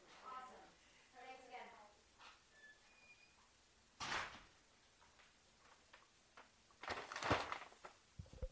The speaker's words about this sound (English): I'm gonna get the door.